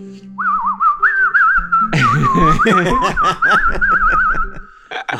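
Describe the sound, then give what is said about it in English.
A high, reedy tin whistle plays a continuous trilling melody with rapid warbles. Midway, a busier layer of lower, voice-like sounds joins beneath it until the end. “Nothing like the sound of a tin whistle.”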